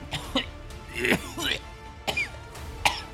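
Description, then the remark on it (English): Someone acts out a coughing fit: a string of harsh, throaty coughs and hacking bursts, uneven in rhythm, with strained vocal noises between them. “And he just fucking coughs up a bunch of fucking, ice cream cones.”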